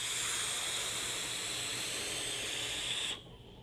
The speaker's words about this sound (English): I've got this loaded up with Bro Trip. And like I said earlier, this is actually a much lower resistance coil. This is a 0.12. So I've got the Noisy Cricket running in unregulated parallel mode. And this is just also a really fantastic vape.